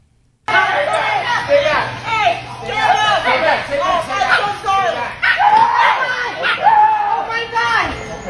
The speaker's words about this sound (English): And they got caught on camera fighting inside of Home Depot. Now, we have a little audio of the owner realizing the dogs are fighting as she goes to pick up her little puppy.